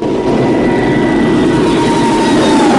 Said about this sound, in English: The small black plane takes off, blending with the darkness of night.